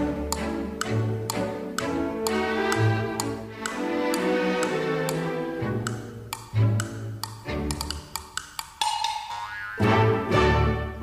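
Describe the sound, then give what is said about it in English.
A steady run of sharp, regular ticks from a phone timer, evenly spaced and clicking along over a bouncy, tonal musical backdrop, with no one speaking. “Let me put the timer on my phone.”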